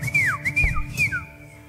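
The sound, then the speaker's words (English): A person whistles three quick descending notes during worship, each sliding down in pitch, clear, with low background rumble underneath. “Sometimes I whistle during worship.”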